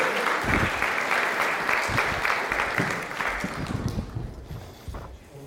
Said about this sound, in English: Okay, so give him a round of applause. Encourage him.